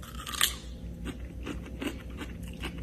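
A crisp, sharp crunch of someone biting into a big, plump, firm cucumber, followed by about five steady, softer crunching chews spaced roughly evenly apart, with no talking.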